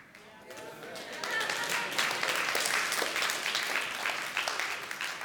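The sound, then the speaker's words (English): An audience breaks into applause, many hands clapping in a dense, steady patter that swells after the first second and holds at a fairly loud level to the end. “I actually wasn't waiting for a clap.”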